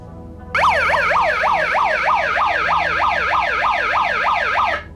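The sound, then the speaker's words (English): A megaphone's built-in alarm, set off with its alarm button, wails in rapid, repeating up-and-down siren sweeps, loud and steady for about four seconds with no talking, then cuts off. “This is like a little alarm button that it has.”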